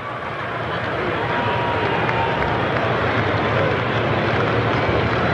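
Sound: baseball stadium crowd noise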